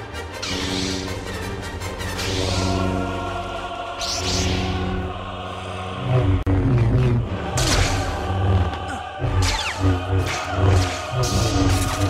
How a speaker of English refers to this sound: So you got the lightsaber clash.